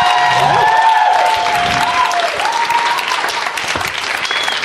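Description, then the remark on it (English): An audience applauds Paul F. Tompkins steadily for several seconds, a dense wash of clapping with a few whoops and cheers rising above it, staying loud throughout. “Let's hear it for him, everybody.”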